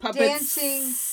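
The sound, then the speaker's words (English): A voice makes a short vocal sound that slides into a steady, sharp hiss, imitating steam escaping. It lasts about a second at moderate loudness. “And like then steam dance. Escaping.”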